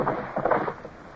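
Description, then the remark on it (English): A rowboat nudges in toward a riverbank where the river narrows and runs faster above a dam, with a brief swish of water and a soft scraping bump, then a quieter wash as it settles. “Now, pull over to the bank there,”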